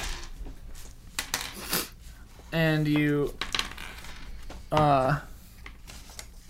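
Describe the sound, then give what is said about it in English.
Dice clatter and tumble across a hard table in a quick burst of sharp, rattling clicks as players roll the dice in front of them during a game, followed by short bits of talking voices. “So now we roll any dice that we have in front of ourselves.”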